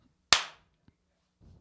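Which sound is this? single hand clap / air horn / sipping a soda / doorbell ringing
single hand clap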